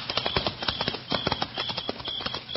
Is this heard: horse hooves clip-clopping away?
yes